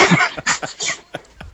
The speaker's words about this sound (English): God shit, they cough in that track.